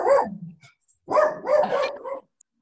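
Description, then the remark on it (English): A small dog barks, one yap trailing off, then a quick run of two or three high, slightly whiny barks after a short pause. No one speaks. “got a little dog.”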